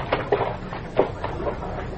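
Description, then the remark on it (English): A stuck car door is yanked and rattled several times in quick, uneven bursts of clunks and scraping, moderately loud, with no voices. “Door's jammed shut.”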